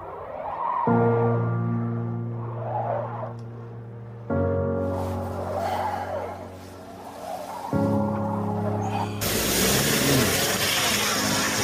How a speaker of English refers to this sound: Look at that. Car stuck out in the ice, snow.